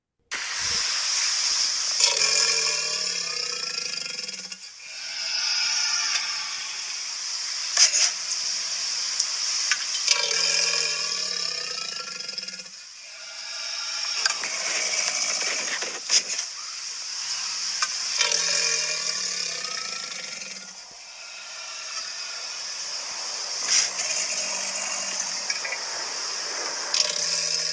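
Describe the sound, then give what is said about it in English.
A male alligator bellowing: a series of deep, throaty roars repeating every few seconds over a steady loud hiss, with no one speaking. “And it lets any other female alligators in the area know that that is the biggest, most sexy alligator.”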